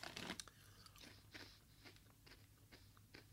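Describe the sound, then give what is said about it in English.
Crunching of durian-flavored crisps being chewed, a sharp bite followed by a steady series of crackly crunches at an irregular rhythm, fairly quiet with no talking. “So here we go, durian-flavored crisps. All right. What's the... Well, wow, a lot of crunch there.”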